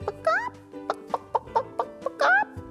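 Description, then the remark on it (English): A hen clucks, a steady string of short, sharp clucks bracketed by a couple of longer, rising squawking calls at the start and end, with no talking. “Well, the hen laid an egg on the fireside rug.”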